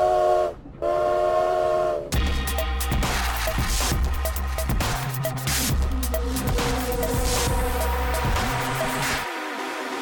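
train with steam whistle

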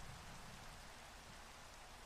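rain falling

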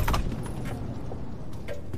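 door opening

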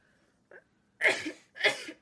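sneeze

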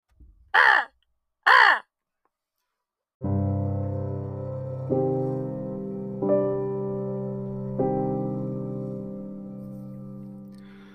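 crow cawing

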